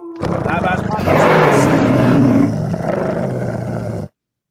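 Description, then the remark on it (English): A man lets out a long, loud, throaty growl, imitating a snarling wolf, sustained for about four seconds before cutting off abruptly. “Call off your wolf, okay?”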